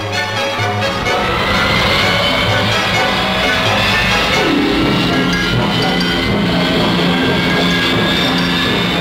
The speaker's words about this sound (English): It's a tense moment, but Donald Campbell has known many like it. The huge engine starts up.